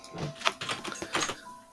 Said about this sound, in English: First dice roll this evening. It is. We didn't do any last episode. 23. 23. It's pretty good.